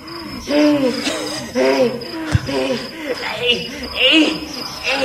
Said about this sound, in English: All I'm hearing is crickets.